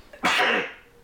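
A single sharp, explosive sneeze bursts out, loud and breathy, then trails off quickly into quiet.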